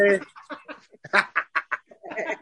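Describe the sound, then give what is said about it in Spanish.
A pet parakeet in its cage squawks in a quick string of about ten short, harsh chirps and screeches, fairly loud, with no talking. “Ese perico no deja hablar.”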